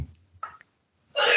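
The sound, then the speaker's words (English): A single sneeze: a short sharp intake of breath, a brief pause, then a loud explosive burst at the very end. No one is talking. “yeah, so bless you.”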